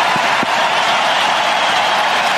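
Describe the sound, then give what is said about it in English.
A loud, steady roar of a hockey arena crowd cheering a welcome back for Patrick Kane as he skates around, a dense unbroken wash of many voices and applause that holds at full strength throughout, with no distinct speech. “Listen to that crowd.”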